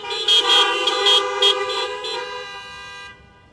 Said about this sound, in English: How about an amen honk for that?